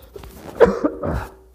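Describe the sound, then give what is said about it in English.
A few short, rough coughs and throat-clearing noises, with a sharp burst near the middle followed by a longer raspy clearing, moderately loud with no speech. “sorry, I got a frog in my throat this morning.”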